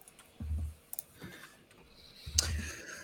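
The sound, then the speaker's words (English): A few sharp clock ticks land at uneven intervals, each paired with a dull low thud, fairly quiet against a faint background hum with no voices. “But that mysterious ticking sounds interesting.”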